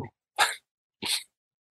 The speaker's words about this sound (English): My dog is screaming. I'm going to go and let him in. I'll be back in 1 second.